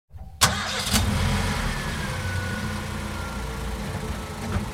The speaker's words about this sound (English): Car engine.